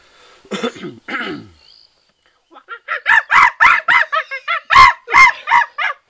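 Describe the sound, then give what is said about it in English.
A person imitates a chimpanzee call, with two drawn-out vocal cries and then a rapid, rising series of loud, breathy hoots, without other talk. “Chimpanzee? Difficult.”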